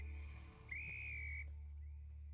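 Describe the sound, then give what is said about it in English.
A sharp, steady whistle blast sounds for under a second over a low background hum, followed by a fainter, shorter whistle tone. No voices are heard. “Can you imagine just hearing a whistle and just getting thrown back to that exact moment?”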